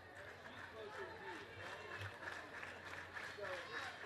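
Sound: stadium crowd cheering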